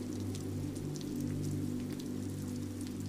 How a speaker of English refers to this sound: Fog is thick and heavy over the glistening streets, and the rain cascades down the shingles of neighboring townhouses.